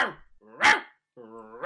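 A dog lets out a few sharp, loud barks, with whiny, drawn-out vocal sounds in between the bursts.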